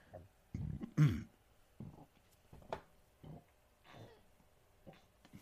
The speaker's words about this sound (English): Ooh, excuse me. Sorry, I'm filming it raw. I'm burping all the time.